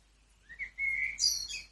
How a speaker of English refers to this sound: Listening to the birds.